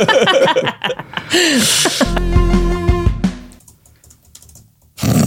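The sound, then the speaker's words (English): Someone hits computer keyboard keys in a clattering burst, mixed with laughter and a steady humming tone, fairly loud before it fades and then clatters briefly again. “Why he hits that keyboard.”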